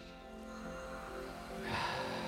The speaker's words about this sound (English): And so why don't you go ahead and give it a good sniff. Mmm, what's that smell? Ew.